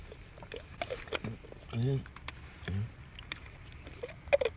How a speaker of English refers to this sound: I think his friend is snoring in there. Who's that? Not the dog. No, I'm sure I hear a person snoring.